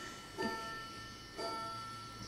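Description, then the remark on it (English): A clock chimes to mark 11 o'clock with two soft, bell-like strikes about a second apart, each leaving a steady ringing tone that lingers between them. No one speaks. “That's the clock that tells us it's 11, no problem.”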